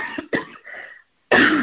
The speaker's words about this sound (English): Be praying for me that this cough would end today for me in Jesus' name.